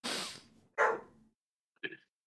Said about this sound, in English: Sorry, if you can hear my dog, Jesus.